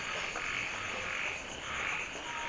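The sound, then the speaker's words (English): A dense chorus of frogs croaking continuously at nightfall as rain falls, with steady high-pitched trilling layered over a wash of lower calls, filling the air evenly without pause and no voices. “Darkness falls like that, and frogs begin to drown out raindrops.”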